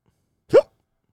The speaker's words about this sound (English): You just involuntarily caused me to hiccup when you hiccup.